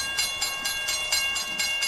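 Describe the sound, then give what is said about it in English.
A train rolls along the rails with a steady, rhythmic clickety-clack, repeating bursts about four times a second over a constant rumbling hiss, moderately loud, with no voices. “take us across 37 different stops on the UK's longest train route from Aberdeen to Penzance?”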